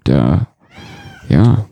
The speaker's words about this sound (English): So, hi, Kitty. He always interrupts almost every single podcast. You hear Wembley.